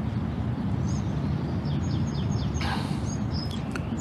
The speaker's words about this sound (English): Hear the birds?